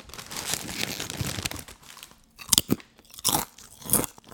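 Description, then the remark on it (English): Crisp crunching of someone chewing raw arugula leaves, a dense stretch of wet munching followed by several sharper, distinct bites with brief pauses between them. No talking. “Sometimes, I even just eat it raw, like this.”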